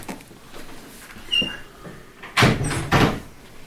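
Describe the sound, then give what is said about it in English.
A door handle is jiggled and rattled, giving a light click followed by two heavier clunks of the latch against a quiet background, with no one speaking. “Those doors don't appear to be locked. Okay, I don't want to enter them. Alright. Wiggle the handle.”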